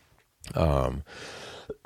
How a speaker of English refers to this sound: Wow, there we go, first cough.